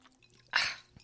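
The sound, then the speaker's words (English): A single wet gulp of a drink, taken as one of five big gulps after a toast. It is a short burst with a brief swallowing sound, surrounded by near silence and no talking. “Okay, so now that we got through that, we're going to do five big gulps.”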